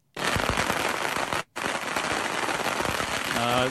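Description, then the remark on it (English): Fireworks in America going off in a loud, dense barrage of rapid crackling pops, broken by a brief pause, then resuming just as thick. A faint voice may come in near the end. “There's going to be some loud noises.”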